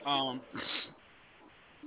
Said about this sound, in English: even the dogs agreed. See, y'all hear the dogs in the background? They're agreeing.